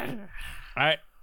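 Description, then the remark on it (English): A person growls at a teaching assistant in two short, throaty bursts, a softer one first and a louder one just after, with no words spoken. “Hey, stop growling at my teaching assistant.”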